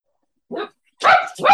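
Dogs bark: a short, softer yap followed by two loud, sharp barks in quick succession, with no talking around them.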